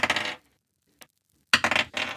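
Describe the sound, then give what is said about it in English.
Dice clatter and tumble across a table in two rattling bursts, with a single faint click in the quiet gap between them. Fairly loud, no voices. “Good dice rolls.”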